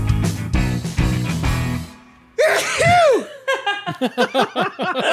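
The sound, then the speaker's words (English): A loud sneeze with a drawn-out voiced 'achoo' quality, preceded by a burst of noisy clatter and followed by a run of rhythmic, breathy laughter. “No, I'm on the record saying achoo. Convulsion. And to repay the favor to you, …, God bless you.”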